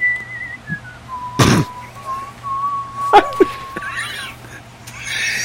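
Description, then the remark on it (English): A person whistles a thin, wavering melody as background music, gliding up and down in pitch, fairly quiet and steady, interrupted by a couple of brief, sharp knocking thuds. “I'm just putting some background music in.”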